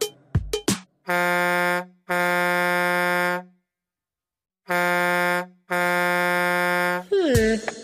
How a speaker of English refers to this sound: What goes honk honk? A goose. But that didn't sound like a goose. What else goes honk honk? A nose. That doesn't seem right either. Oh, a truck.